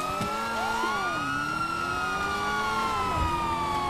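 A police car siren wails continuously, its rising and falling tones overlapping with engine rumble. It sounds loud, with no talking.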